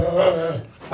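A dog lets out a drawn-out, tonal growl lasting about half a second, then a brief pause before a sharp, loud bark bursts out at the end, with no voices.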